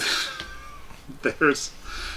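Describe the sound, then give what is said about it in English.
A cat in a film's Lanning Mansion demolition scene meows twice in quick succession, short and fairly loud, rising out of a hissy, noisy background with a faint whistling tone sliding down beforehand. “Poor kitty.”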